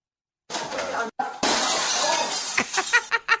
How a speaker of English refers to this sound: That is a great sound bite right there. Right? That sounds perfect. That is like the sound effect of smashing glass from like every radio bit ever.